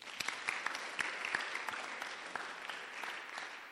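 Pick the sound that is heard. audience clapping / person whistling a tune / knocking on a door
audience clapping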